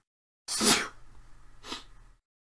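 A loud sneeze from seasonal allergies bursts out with a sharp hissing release, followed about a second later by a softer, shorter breathy sniff or exhale. No one speaks.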